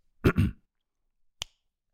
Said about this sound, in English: I snap my fingers and it puts a spike on the waveform. And if any of you are curious why I'm doing that, just so that we know where to edit it out, where to come back in.